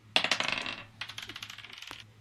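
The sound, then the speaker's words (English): Dice clatter across a hard tabletop in two quick bursts of rapid, bright clicks that bounce and settle, fairly loud, with no voices, as dice are rolled for initiative in a game. “All right, let's roll for initiative. Let's do that. All right, I'm changing dice.”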